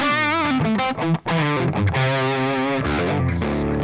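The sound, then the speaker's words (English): A heavily distorted electric guitar, with the amp's first knob pulled for distortion, plays sustained, gritty chords with a thick buzzing tone, loud, with brief gaps between phrases and no talking. “What do you call that, Lou? That's called distortion.”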